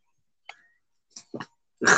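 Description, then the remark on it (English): A dog growls at another pet, Storm, in a few short, rough bursts separated by brief pauses, the last one louder and harsher, with no one talking. “He was growling at Storm.”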